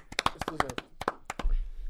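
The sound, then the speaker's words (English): A short burst of hand clapping applauding LeBron, about a dozen sharp, uneven claps over a second and a half, with a faint voice briefly mixed in and a low rumble as the claps trail off. “Well done to LeBron for. Yeah, let's clap it up.”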